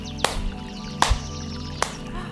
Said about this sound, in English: Now I want you to do 3 loud claps. And notice how your hands feel. My hands feel tingly and warm. Now do 3 more loud claps.